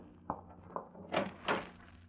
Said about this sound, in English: open the closet door and show Dale he's not in there pointing a gun at her head.